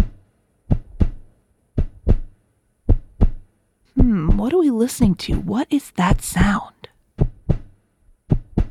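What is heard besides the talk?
heartbeat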